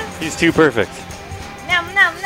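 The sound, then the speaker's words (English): A man speaks briefly, then two short, high-pitched cat meows follow in quick succession, each a wavering, drawn-out cry at moderate loudness. “Because if we get stuck in this meow vortex, it's gonna be a while.”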